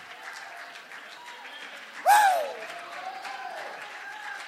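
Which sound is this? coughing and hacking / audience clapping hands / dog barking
audience clapping hands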